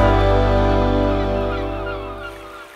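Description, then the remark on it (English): Seagull cries wheel over a low, sustained musical drone that slowly fades out, the calls fairly loud and overlapping near the end of a song. “And it's got some nice little seagulls on the end.”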